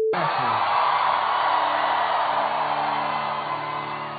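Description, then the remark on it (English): A large concert crowd roars with sustained cheering, whoops and yells, a dense wall of noise that holds steady for several seconds before easing slightly at the end. “Crowd absolutely lost their mind for that one.”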